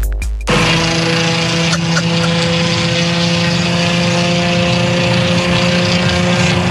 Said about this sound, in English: What is that? Is that his muffler? You got a bad muffler? Sounds like a dead duck, doesn't it? It does. Oh, that's got to sound terrible coming into the apartment complex.